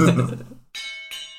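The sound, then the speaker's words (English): A bar's last-call bell rings twice in quick succession, bright with shimmering overtones, signaling the last round of drinks, right after a brief burst of voices and room noise. “That's the final call bell there. Last call at the bar.”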